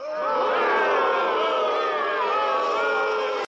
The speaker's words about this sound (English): To be clear, I'm not booing the talent. I'm not booing the fact that he got paid.